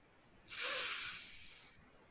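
A single long, deep breath drawn in slowly to a count of five, a breathy hiss that starts abruptly and loud, then slowly fades over about a second, with no talking.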